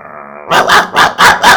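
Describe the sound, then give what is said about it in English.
Hackney, a big German Shepherd, snarls and growls in the house: a brief sustained rumbling growl, then four loud, harsh, rhythmic snarling bursts in quick succession, with no one talking. “And Ronnie came over, and when he opened up the door, Hackney looked at him, snarled.”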